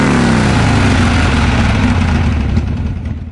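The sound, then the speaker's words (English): A loud motorcycle engine roars, its throaty rumble holding steady and dipping slightly in pitch as the rev eases off, with no voices present. “Flex your engine.”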